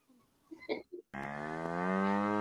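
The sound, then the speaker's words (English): A person imitates a cow, letting out one long, loud, droning moo after a few short breathy vocal noises and a brief pause. “Sounds like a nice medium rare steak to be to me.”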